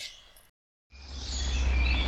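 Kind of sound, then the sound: bird, birds chirping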